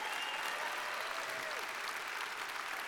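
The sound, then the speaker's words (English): An audience claps steadily, a dense, even wash of applause that holds at a constant level for the full three seconds, with a faint vocal whoop drifting through it. “by the way, if you're a believer and you're redeemed and he sets you free and you're forgiven and you know you're loved by God and you know you're experiencing his mercy, how about a shout or a clap or something, because you're awful quiet today.”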